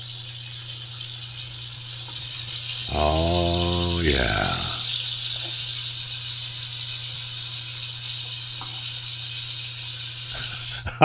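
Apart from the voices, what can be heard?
bacon sizzling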